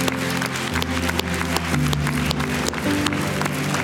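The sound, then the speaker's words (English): A round of applause from a crowd for the students present, after a closing prayer: dense and steady throughout, with sustained low musical notes playing underneath the clapping. “Hey, before we leave, because our students are here with us, can we give them another big round of applause?”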